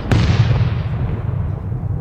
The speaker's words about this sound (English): Wasn't that worth it? My thunder was better than your bomb.